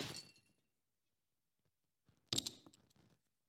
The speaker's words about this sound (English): And we're left with shattered pieces. We try to take these pieces. We try to pick them up.